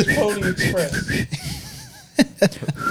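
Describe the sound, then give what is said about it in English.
A person whistles a short, wavering signal whistle, rising and falling a few times at moderate volume, surrounded by vocal sounds, snickering laughter and sharp breathy bursts. “The whistle is like this.”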